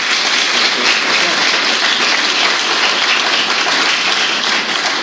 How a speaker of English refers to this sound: And thank you all. Perhaps we could have one more round of applause for our speaker.